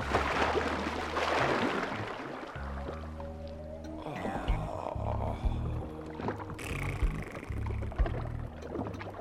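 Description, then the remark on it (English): A big mollusk topples into his tub of water on a veranda, a heavy body splash with a loud broad wash at the start, followed by sloshing and gurgling water with low tonal sounds underneath. “The big mollusk moved out to the veranda and toppled into his tub.”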